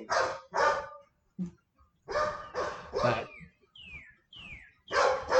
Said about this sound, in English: Come on, dog, knock it off.